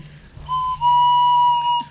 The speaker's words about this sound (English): You hum into it. Oh. It's a kazoo type thing. Oh, it's called humazoo.